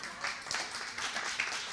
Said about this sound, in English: Go ahead and clap. If speaking is important, then clapping is too.